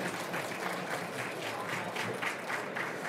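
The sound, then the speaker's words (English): An audience breaks into steady applause for three runners who came up to speak, many hands clapping in a dense, continuous patter that holds at an even, fairly loud level for a few seconds with no voices on top. “So let's just give a round of applause to these three people who are brave enough to come up here and do this.”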